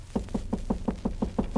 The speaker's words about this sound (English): She's in her room across the hall. I'll knock on the door.